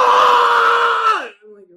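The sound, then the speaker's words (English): A voice imitates the loud, sustained scream of a gaming YouTuber, one strained shout held for over a second before it breaks off and trails into a brief, quieter vocal sound. “The gaming YouTube people who scream like at every moment and they just get super loud and it's like that.”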